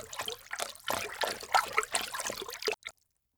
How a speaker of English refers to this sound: Vini thrust her hands into an icy slush and held up a dripping white plastic bag.